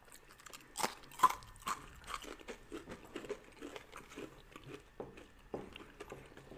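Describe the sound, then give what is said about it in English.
Crunching of dry, chewy medium-heat beef jerky: a few sharp bites followed by steady, rhythmic chewing with crisp crackles, fairly quiet and with no talking. “You can hear that crunch.”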